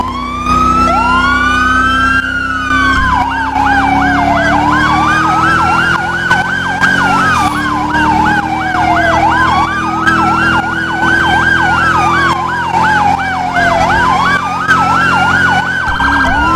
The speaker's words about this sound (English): So we're just gonna turn these sirens on and we're gonna see how.